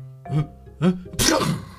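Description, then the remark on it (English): An elephant bus driver lets out one loud sneeze: two rising, voiced 'ah' gasps build up, then a sharp, breathy burst explodes at the end. No other talking. “And then he sneezed.”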